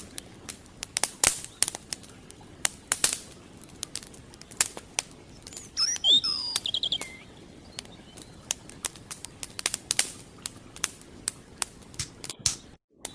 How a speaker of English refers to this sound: Nice. I can hear the river. I hear the campfire.